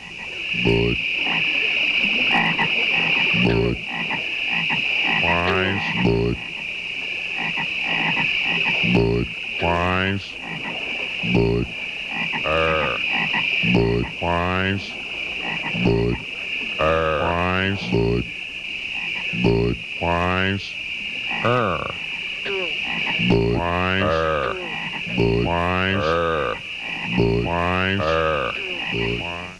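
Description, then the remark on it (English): Deep, throaty frog croaks from an old Budweiser beer commercial with frogs on lily pads repeat in a loose call-and-response, several every few seconds, loud over a steady high-pitched hum of night insects that continues throughout. “I recognize that as the old Budweiser Frog on Lily Pad commercial.”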